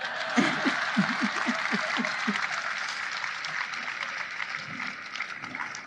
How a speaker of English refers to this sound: Your extraordinary leadership has made this glorious day possible. That's an applause line.